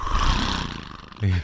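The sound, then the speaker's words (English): A person makes a rough, rumbling roar with their voice, imitating a mix of a Harley motorcycle engine and a tiger, followed by a short, deeper growl at the end, loud. “Did that sound more like a Harley or a Tiger? A mixture. It was a hybrid.”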